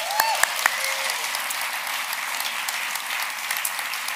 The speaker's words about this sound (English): Please give Jesus a round of applause.